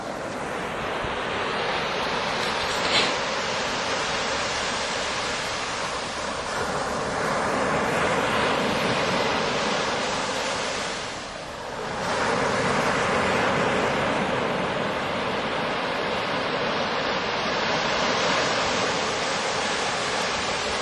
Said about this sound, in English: Who says you don't get waves at Balmoral? Listen to that, because pretty good swell in the ocean today, and I just had to let you hear those lovely waves.